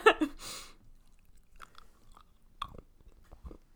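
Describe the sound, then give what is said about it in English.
Chewing of a piece of tempered Terry's chocolate orange, opening with a sharp snap, then soft irregular crunches and mouth sounds at low volume, with no talking. “Terry's chocolate oranges don't really crunch, though, in the mouth. Not completely, but there is a crunch to it.”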